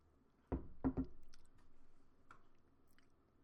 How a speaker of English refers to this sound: Begin to hydrate, and I'm gonna take a little sip of water, people.